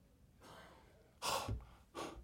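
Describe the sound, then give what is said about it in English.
A voice imitates the sun panting heavily and tiredly: a long breathy exhale followed by two sharper, louder gasping breaths, clear with no words spoken. “Even the sun is panting.”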